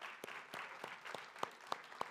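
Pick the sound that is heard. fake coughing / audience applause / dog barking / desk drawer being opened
audience applause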